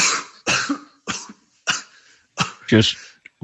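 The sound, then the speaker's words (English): A harsh coughing fit: about six raspy coughs in quick succession, roughly every half second, one more strained and voiced, ending with a short final hack. “It's quite a cough got there”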